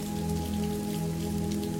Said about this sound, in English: So the rain starts to come down a little bit. There's less and less rain. It's subsiding even more. And it goes almost down to a drizzle. And suddenly, the rain stops.